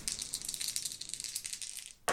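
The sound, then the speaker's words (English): Dice, an action die and two challenge dice, rattle and clatter for about two seconds in a dense run of bright, rapid clicks, ending in a sharper knock as they come to rest, showing a 6 on the action die and a 1 and a 2 on the challenge dice. No one speaks. “At this point, we are going to go ahead and continue the expedition, and Lucius is going to attempt to continue with vigilance, so we're going to roll plus wits again.”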